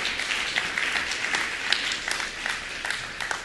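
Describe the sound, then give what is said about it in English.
A church audience at the Harbor applauds visiting high school students, a dense wash of many hands clapping at once with no break or swell, holding a fairly even loudness across the few seconds. “You got a round of applause for these guys.”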